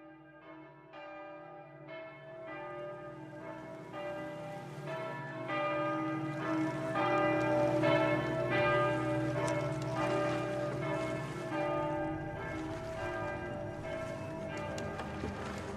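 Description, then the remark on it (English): A church bell tolls steadily from far across the city, its rich ringing strokes overlapping into a continuous humming wash of tone, with no voices present. “Far across the city, a bell began to toll.”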